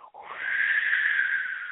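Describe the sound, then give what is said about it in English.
A howling wind sound effect like those in cheap 1970s horror movies: a breathy, whispery whine that swells up in the first moments and then holds steady and fairly loud, with no talking over it. “The wind making a howling noise, sort of a whispery noise.”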